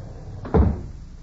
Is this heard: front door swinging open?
yes